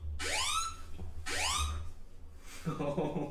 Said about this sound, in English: Oh, that threw me off for a second. I was like, is there a bomb here? Fire alarm. Yeah. Jesus. Sorry about that.